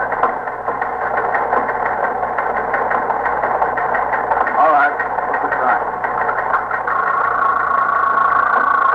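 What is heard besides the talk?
teletype machine printing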